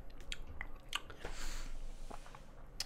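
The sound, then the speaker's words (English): Someone takes a quiet sip of a cocktail, with a soft slurping rush in the middle surrounded by small wet mouth clicks and smacks, no talking. “I didn't sip it yet.”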